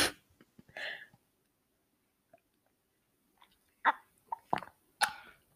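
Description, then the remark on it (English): For an ASMR recording, someone picks up a cup and sips a drink: a short wet slurp, a quiet pause, then a cluster of sharp swallowing gulps and mouth clicks. There is no talking. “I'm about to take a sip. So I'm picking up my cup.”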